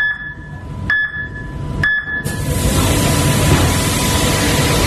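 A car moving through an automated wash tunnel that also dries, blows, vacuums and waxes: a steady mechanical whine with a low rumble and a couple of sharp knocks, then a loud, continuous rush of water spray takes over.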